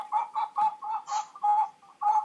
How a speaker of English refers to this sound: That chicken there, please.